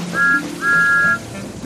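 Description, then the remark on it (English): The steam whistle of Thomas the tank engine sounds two clear peeps, a short one followed by a longer held one, bright and fairly loud against a low background rumble, as he sets off coupled to flatbeds loaded with pipes. “So Thomas was coupled up to the flatbeds, and with a peep of his whistle, he was on his way.”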